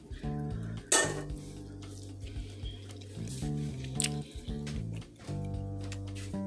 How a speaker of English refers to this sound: Now, if you've been following me, you know, I'm gonna chew in your ears, because people, I'm human and I'm a foodie.